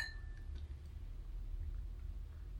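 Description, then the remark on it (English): A single light clink of wine glasses in a toast during a wine tasting rings at the very start, its thin tone fading within half a second over a low, steady room hum; no one speaks. “All right. Cheers.”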